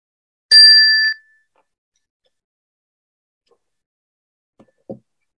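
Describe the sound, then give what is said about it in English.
A single bright chime strikes once and rings briefly with a clear, high tone before fading, followed by silence and a couple of faint soft knocks near the end. “And that was my little chime.”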